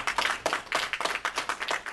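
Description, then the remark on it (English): A short round of applause: a small group clapping in a quick, fairly steady rhythm, the bright, crisp claps overlapping slightly at moderate volume, with no voices. “Let's give Amelia a round of applause.”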